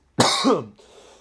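A single harsh, fairly loud cough with a raspy voiced edge, trailing off into a faint breathy rustle with no talking.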